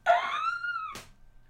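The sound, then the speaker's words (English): A phone text alert goes off: one bright, wailing electronic tone that swoops up and holds for nearly a second, then ends in a short noisy burst. No one talks over it. “That was my excited text.”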